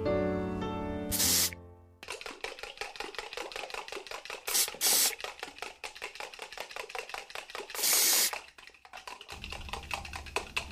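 aerosol can spraying

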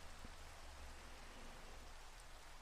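rain falling

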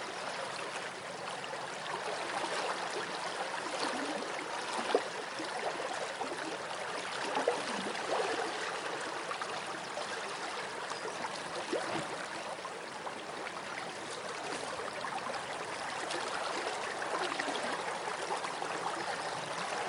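flowing river water trickling

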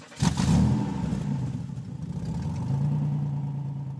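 car engine driving off

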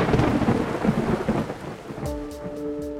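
thunderstorm with heavy rain

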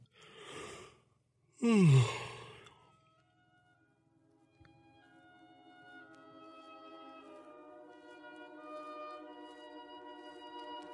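person yawning

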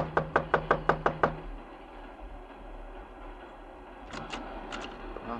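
knocking on a door

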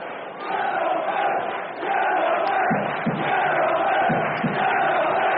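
football stadium crowd

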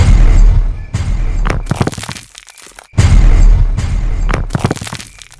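explosion blast

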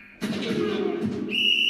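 whistle blown

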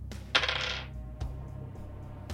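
dice being rolled

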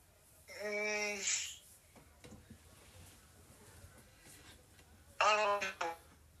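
telephone dialing tones

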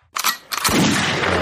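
gunshot sound effect

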